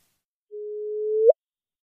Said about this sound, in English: This merger of two black holes happened 1.3 billion years ago, when the Earth contained only simple multicellular life. This is what it sounded like.